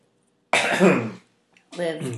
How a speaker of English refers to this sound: I wanted to cough to it in case you want to edit that out. Or you can leave it in so we can talk about how you wanted to edit it out.